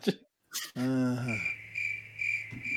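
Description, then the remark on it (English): A cricket chirping sound effect: a steady, high-pitched trill rings out clearly for a couple of seconds, following a brief burst of noise and a low tonal sound at the start. “Hey, I think you need to bring back that cricket sound effect.”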